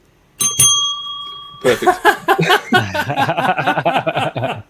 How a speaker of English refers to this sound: Order up. All right. That bell means we're going to move on.